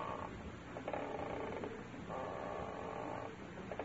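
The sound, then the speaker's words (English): A rocking chair creaks in slow, repeated strokes as someone sits rocking in it, each long groaning creak rising and fading in a steady rhythm, moderately quiet, with no talking. “My bones are rusting. Oh, it's the rocker.”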